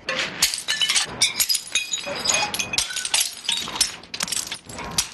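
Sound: ceramic plates being smashed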